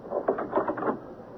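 A bedroom door swings shut: a short run of wooden knocks and latch clicks over about half a second, moderately loud, then a faint hiss. No one speaks.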